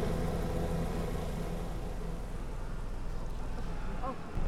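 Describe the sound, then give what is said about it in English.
A helicopter drones loudly and steadily, its low rotor chop pulsing in a fast rhythm beneath a broad wash of engine noise, with no voices. “A helicopter.”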